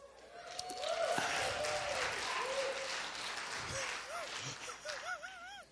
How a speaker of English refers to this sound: You can always get a good old clap out of a congregation when you mention healthy marriage. They're like, yay! 15 years, three kids.